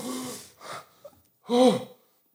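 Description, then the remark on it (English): A sharp snort followed by a strained gasp after sniffing smelling salts: two quick breathy bursts, a short pause, then a louder, longer choking inhale with a rough voiced edge. No talking. “Like, I just fucking, like, snorted a fucking, like, an animal up, dude.”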